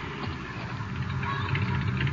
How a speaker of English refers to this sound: There's a car coming. Could be them.